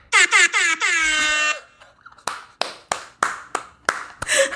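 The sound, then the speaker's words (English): Three quick air horn blasts and then a longer held blast, loud, followed by a string of sharp claps or smacks with a rising burst of noise at the end. “You're so good, Ambie, with your air horn.”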